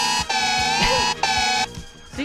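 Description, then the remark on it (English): An air raid siren sound effect blares loudly in long, steady-pitched blasts, broken by brief dips, with a harsh buzzing tone and no talking over it. “Do you have the air raid siren ready?”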